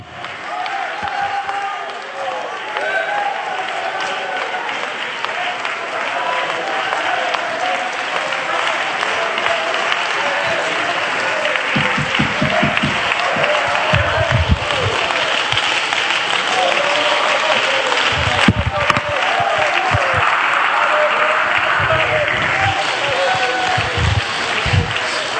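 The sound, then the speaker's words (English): An audience applauds in praise to the Lord, clapping steadily for about twenty-five seconds, a dense, loud wash of clapping with a murmur of voices and occasional low thumps underneath. “Well, when you get down, just clap your hands again to the Lord.”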